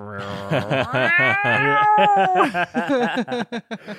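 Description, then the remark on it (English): A human voice imitates an angry cat, saying the word "bureau" as a loud, wavering yowl that bends in pitch before breaking into short, choppy growling bursts near the end. “And it sounds like something a cat makes, the sound a cat makes bureau. When it's really angry.”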